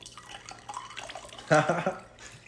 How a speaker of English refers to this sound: I love the gusto with which you pour.